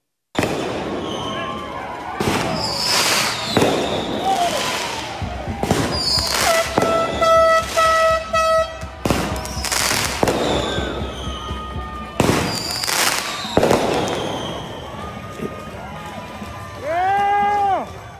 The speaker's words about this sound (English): And he had fireworks shot off outside his apartment. Here's a little bit of that.